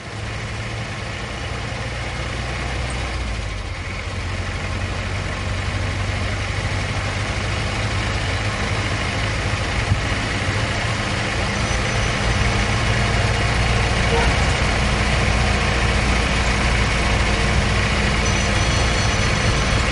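An old 1950s car engine in Cuba idles steadily, a deep, rough rumble with a constant low throb and a faint rattly texture, running alone without any talking for the full stretch.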